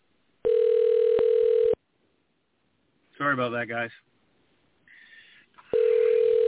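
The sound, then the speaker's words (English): A phone rings in two loud, steady electronic bursts about a second long, with a person briefly speaking in the gap between them. “Answer the phone”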